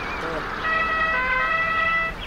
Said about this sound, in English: This is, we're gonna hear the car horn honk again.